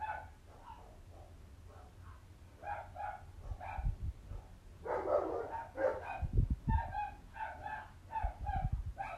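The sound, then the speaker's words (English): Several dogs bark repeatedly in a steady, overlapping run of yaps and barks, moderately loud, with a few low thumps underneath and no talking. “There are always dogs barking.”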